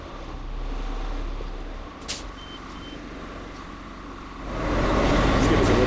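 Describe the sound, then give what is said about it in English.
A large bus engine idles and rumbles at low speed as the bus drives slowly through an industrial parking lot, with a short hiss partway through and a couple of faint high beeps, then the engine noise swells louder toward the end. “you know, you can't really drive a bus all that fast in a industrial parking lot. So I guess we'll just follow the bus and see where it leads.”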